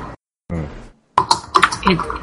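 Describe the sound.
Quick, clicky keystrokes from a computer keyboard tap out in a brisk burst, with a voice murmuring just before.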